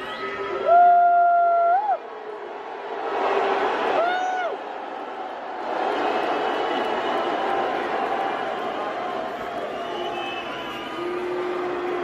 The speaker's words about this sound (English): But you know this one thing? All those people are booing, and I'm just pointing out the obvious. You have terrible seats.